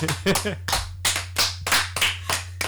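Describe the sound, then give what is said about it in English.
Several people clap together in a quick, uneven burst of applause lasting a few seconds, with a steady low hum underneath and a bit of voice mixed in. “That's the first clap out we've had on this podcast, so you should be honest.”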